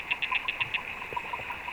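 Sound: underwater beetles tapping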